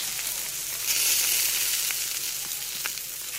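Steady sizzling of burgers frying in hot oil, put in just after the oil temperature is cranked up; a dense crackling hiss with occasional sharper pops, continuous throughout with no voices.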